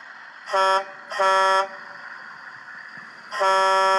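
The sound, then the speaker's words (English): A large semi-trailer truck's air horn honks three times as the truck stops: two quick blasts and then a longer one after a pause, loud and brassy with a rich stack of harmonics over a low rumble. “I think that large semi-tractor trailer is stopping for me.”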